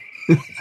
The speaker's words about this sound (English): Well, that deserves a good sound effect right here. It's called cricket.